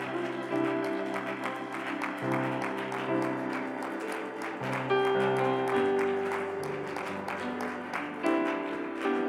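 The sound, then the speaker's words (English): An audience claps hands unto God in a steady rhythm, dense and lively throughout, with sustained organ-like music playing underneath and no talking. “Can you clap your hands unto God?”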